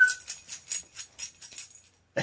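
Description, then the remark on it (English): A dog makes noise: a quick series of soft, breathy bursts in a steady rhythm, ending with a short louder rustle. No one speaks. “Dog, hey.”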